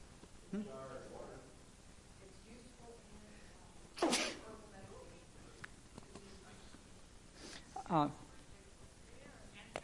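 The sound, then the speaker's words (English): Two sharp, loud sneezes about four seconds apart, each a sudden explosive burst of breath, with a faint murmur of voices and room noise in between. “Anybody want to tell me what you know about wormwood while I sneeze?”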